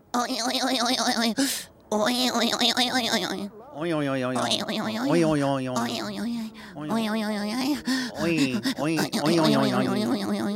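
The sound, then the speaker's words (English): Someone does heavy, exaggerated breathing exercises, loud rushing breaths mixed with voiced groans and sighs that rise and fall in pitch, repeating continuously with brief pauses. “I'm doing breathing what? Exercises”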